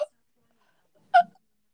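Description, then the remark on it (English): A single sharp, clipped intake of breath, like a strange half hiccup, made deliberately by a voice. A tiny catch of sound starts it, then brief silence before the gasp. “I usually can't stop it because it, like, it gets to the point where it's starting to get it, like, I breathe like this, like, like a half, like a weird hiccup, like.”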